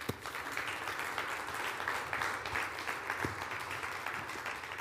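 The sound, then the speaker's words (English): A church audience claps steadily for several seconds to give Christ a hand clap during a sermon, a dense, continuous wash of many hands applauding together at moderate volume, with no one speaking over it. “You know Christ, and you're saved and on your way to heaven, just give him a hand clap.”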